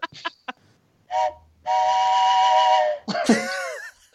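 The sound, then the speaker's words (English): A person imitates a train whistle with their voice: a short toot, then a long steady hooting blast, ending in a wavering, vibrato-laden wail. A few faint clicks come first. “You put some vibrato in that, in that train whistle.”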